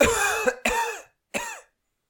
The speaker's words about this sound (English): A cough cough.